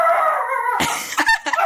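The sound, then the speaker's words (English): A dog-bark alarm sound goes off, starting with a drawn-out howling tone and then breaking into a few sharp, loud barks, with no talking. “That's me alarm. Who turned him to bark at the end of the episode?”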